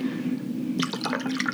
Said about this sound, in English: Okay. Let's put some vodka in this.